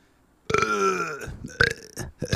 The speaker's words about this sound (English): Okay, hang on, I got a burp.